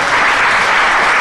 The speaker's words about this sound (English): And already getting applause.